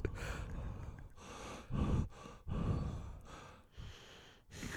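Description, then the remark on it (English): Heavy breathing right into a microphone, several slow inhales and exhales in a steady rhythm, loud with a rough, windy texture and no talking. “I thought I could hear you breathing in the microphone.”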